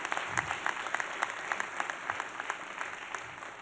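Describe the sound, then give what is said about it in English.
A church audience applauds steadily after a scripture recitation, dense clapping from many hands at moderate volume with a few sharper claps standing out, no voices on top. “Somebody ought to clap for that one.”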